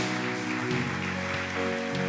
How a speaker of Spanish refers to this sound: Y ahora me gustaría saber hoy cuántos nos acompañan por primera vez. Levanta tu mano si es tu primera vez acá. Muévela así. Amén. Vamos a darles un fuerte aplauso a todos ellos.